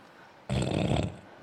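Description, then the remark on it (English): A person makes one loud, exaggerated heavy breath imitating tactical breathing, rough and raspy, lasting about half a second, with quiet background noise before and after. “Tactical breathing.”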